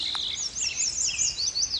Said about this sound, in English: I'm at Martin's Landing, part of the Fort Boise Wildlife Management Area, surrounded by all kinds of singing birds. Mostly song sparrows and yellow warblers, but also black-headed grosbeaks. I heard a downy woodpecker.